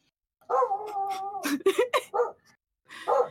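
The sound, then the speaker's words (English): A female dog lets out a drawn-out whining yowl, then a quick run of three or four sharp barks, with one more bark after a short pause. “I'm just used to barking all the time.”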